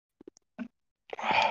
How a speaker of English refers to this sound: No, I just legitimately sneezed. I've been sneezing this entire time.